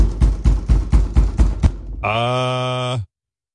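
About seven heavy, rapid, angry thuds pound on a door in a quick, even rhythm, then stop. A steady, buzzy low tone follows and holds for about a second before cutting off.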